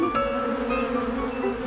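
A bee buzzes steadily, a continuous droning hum with a slightly wavering pitch that holds at an even loudness from start to finish, with no voices present.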